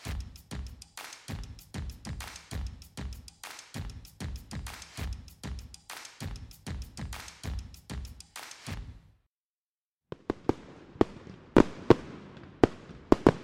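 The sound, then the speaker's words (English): A long run of rapid, loud fireworks bangs and crackles in a steady rhythm, then a short silence, followed by scattered sharp pops and crackling bursts of varying loudness. “Fireworks are one of America's favorite pastimes, but for some, the pops and crackles can be disruptive or downright scary, especially if the noise is unexpected.”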